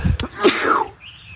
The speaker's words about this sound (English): I'm going to sneeze again. Oh my God.